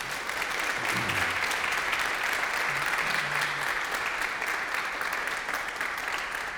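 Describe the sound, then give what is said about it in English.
Sustained audience applause as two small group leaders of a senior class stand to be introduced, a dense steady wash of many hands clapping at even loudness throughout, with a few faint low voices briefly audible underneath. “You're probably gonna wanna applaud again.”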